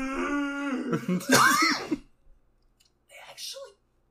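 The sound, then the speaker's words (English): A drawn-out male voiced groan breaks into a few harsh coughs, then a short pause and one fainter, softer cough or throat-clearing. “It threw him so much for a loop, he coughed.”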